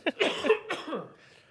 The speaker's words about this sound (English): You can cough. You're good. I don't know what to do. I'm going to cough so bad. Hold on.